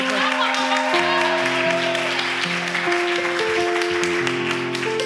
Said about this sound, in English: Can we give a big round of applause for our boys overseas? Could we?